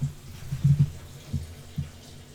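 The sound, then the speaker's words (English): Someone peeing, a quiet liquid trickle splashing into water in a few short, uneven bursts, muffled and low, with no one talking. “Oh, no, it was just pee.”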